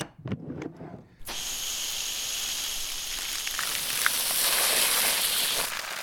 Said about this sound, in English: I am drenched, sir. As I opened the door, a jet of water struck me forcibly in the eye, sir. I forgot about that. That's my milk thief detector.